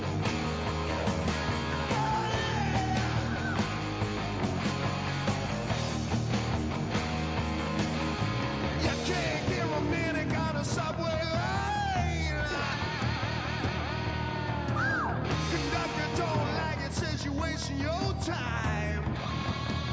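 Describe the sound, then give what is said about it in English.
A large crowd yells a great big "Go Bees" cheer over a dense, loud roar, with rising and falling shouts breaking out above the steady noise for the whole stretch. “And until then, here's a great big Go Bees.”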